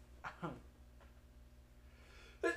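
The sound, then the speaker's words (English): A sharp, sudden sneeze bursts out near the end after a couple of brief, soft vocal sounds, against a quiet hum. “Bless you.”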